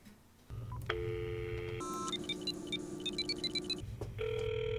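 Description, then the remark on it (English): A phone call being placed to a pop singer: a steady dial tone, then a quick run of keypad beeps dialing a number, followed by a ringing tone. Clear, with no talking. “She's a new pop star, but she couldn't come today, so I'm going to call her on the phone.”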